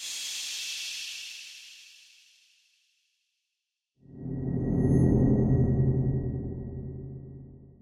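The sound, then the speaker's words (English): Soft steam hisses and gradually fades to silence. After a brief pause, a fuller rushing blast of steam starts, carrying a faint, thin whistling tone above it. “The condor echoed the sound in a soft whistle of steam.”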